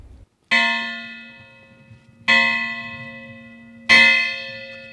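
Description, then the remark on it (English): The state bell at the West Virginia Capitol tolls three times at a slow, steady pace during a Martin Luther King Jr. Day event. Each strike rings out loud and clear with a long, shimmering decay before the next. No voices are heard. “There were speeches and other activities like ringing the state bell after a quick march from the Culture Center to the Capitol.”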